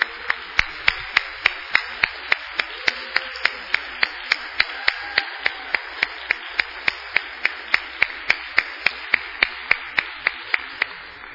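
A church audience applauds its church volunteers steadily, a dense wash of clapping with sharp, evenly spaced louder claps cutting through in a quick rhythm for about eleven seconds, with no voices.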